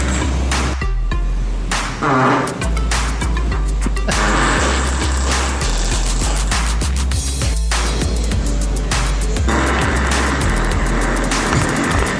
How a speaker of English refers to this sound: Here's the audio of the guy farting. This is the video. Here we go.